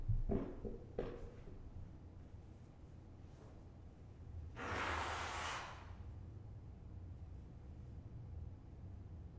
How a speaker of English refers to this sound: Y'all, excuse me, I'm going to blow my nose real quick.